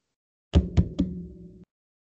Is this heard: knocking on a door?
yes